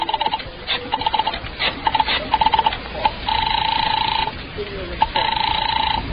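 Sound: dialing a telephone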